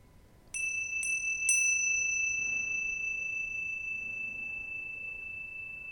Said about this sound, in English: And notice sound. So just to help you along, I'll sound the bell.